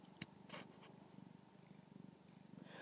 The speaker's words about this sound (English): I am petting a cat. He's meowing and purring. And nuzzling and mauling me.